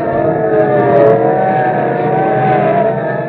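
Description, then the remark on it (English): Police sirens wail over a loud, steady roar of speeding car engines, the rising and falling tones sustained throughout without any speech. “Okay, listen, sirens. Yeah. Look, police cars, and are they rolling?”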